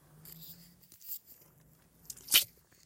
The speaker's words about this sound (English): Gotta take a drink of water, guys. Hold on.